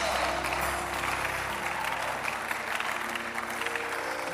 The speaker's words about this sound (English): Come on, give a big clap of offering to Jesus.